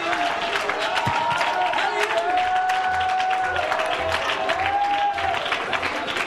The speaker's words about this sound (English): Clap your hands one more time before you're seated and shout with a voice of triumph.